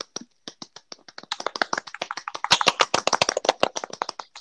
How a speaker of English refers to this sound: we got to do applause because we don't have a soundboard.